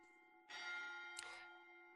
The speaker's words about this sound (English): And on the ninth day, as you have all spent this time in the last homely house east of the sea, the chime rings again from the bell.